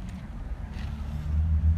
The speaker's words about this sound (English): Oh, there's a car driving by, which may have fucked up with the sound, but I don't really give a shit.